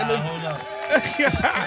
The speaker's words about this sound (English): Gonna clap it up for you.